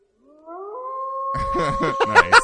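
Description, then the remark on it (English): In a video game, a wolf lets out a long, rising howl that holds steady, then a burst of harsher yelping and snarling cries joins in over it, loud. “Dude, I was hoping you were going to do that when a wolf showed up or killed me.”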